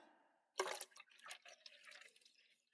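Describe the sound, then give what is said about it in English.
Water is poured into a cup for ASMR audio, splashing in a sudden burst, then trickling and gurgling unevenly for about two seconds, fairly quiet, with a faint hum beforehand. “pouring water into a cup”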